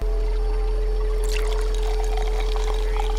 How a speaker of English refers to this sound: He tops off your Pepsi.